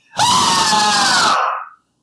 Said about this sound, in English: Well, you hear a scream from inside the shop. A very girly scream.